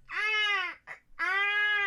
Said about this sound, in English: I thought I just heard my a baby. My husband has a cough. That didn't sound like a cough to me. That sounded like a baby. See, that sounds like a baby crying to me.